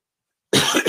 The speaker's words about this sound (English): It is not a cough of what's going around, by the way. I have this dry throat. It's a couple of medicines that I take, and I absolutely hate it because it can strike me at the worst possible moment. And it used to be way worse.